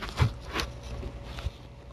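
A foot stomps down hard on an unused vibrator, a free gift with a purchase from AdamEve.com, three heavy thuds spaced unevenly over two seconds, each with a brief crunchy rattle, with no talking.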